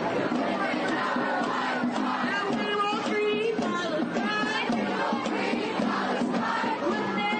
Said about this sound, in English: I hear that chant.